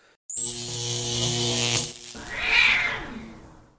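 A loud, buzzy, droning tone with a thin high whine, then a drawn-out meow from a cat called Schrodinger that rises and falls before fading out, with no talking.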